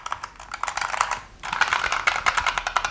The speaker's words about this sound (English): only with this one you get linear keys instead of the clicky keys. And so whereas the clicky keys tend to be noisy and they have a click when you press them, the linear keys just go down smoothly and tend to be quieter.